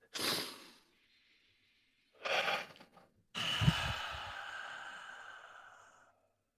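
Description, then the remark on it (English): Several people take deep, audible breaths together as a breathing exercise: two sharp inhales, then a long, loud, drawn-out sighing exhale lasting a few seconds, with no talking. “Do you both mind joining me in a breathing with the boys?”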